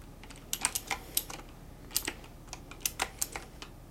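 Rapid, irregular clicking of keys on a computer keyboard during a bed and breakfast check-in roleplay, about two dozen sharp taps with brief pauses between bursts, fairly quiet with no voices.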